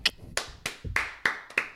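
A single person, the sound guy, claps on request, about seven sharp, bright hand claps at a slightly uneven pace, each with a quick decay, with no talking over them.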